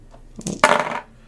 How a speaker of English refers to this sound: you and I are going to re-roll our red dice.